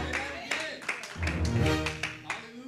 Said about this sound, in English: Y'all better clap your hands. What's wrong with y'all?